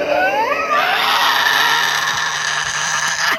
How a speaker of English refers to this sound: Do you want to hear what a real Tasmanian Devil sounds like? A real Tasmanian Devil.